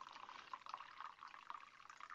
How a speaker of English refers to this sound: I'm pouring some tea. I don't know what kind it is, though.